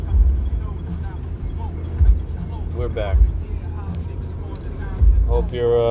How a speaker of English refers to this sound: Well, it's Monday. You know where I am. 5 o'clock traffic. Let's do it. Yo, we're back. We're back in traffic.